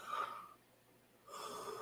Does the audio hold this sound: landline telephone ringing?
no